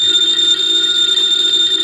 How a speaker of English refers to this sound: Ladies and gentlemen, the ringing of that phone bell means mystery, adventure.